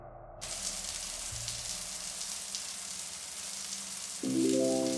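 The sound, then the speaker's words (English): A hot shower runs with a steady hiss of spraying water that starts abruptly and continues unbroken, over a low droning musical tone that swells louder near the end. “A long, hot shower and shave.”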